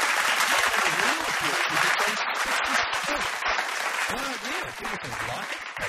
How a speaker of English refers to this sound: Some more fake applause for Alan Brough.